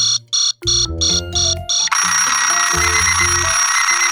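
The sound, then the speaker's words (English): An alarm clock rings loudly in rapid repeating bursts, first a pulsing electronic beep pattern, then shifting into a continuous bright, buzzing melodic tone. No voices are heard. “An alarm clock is a normal clock that you can set up to make a sound at a certain time.”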